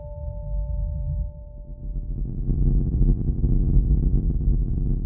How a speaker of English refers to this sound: In the far distance, you hear rumbling. It sounds different from thunder. It's bigger and deeper.